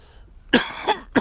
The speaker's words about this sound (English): See, then cough away from it.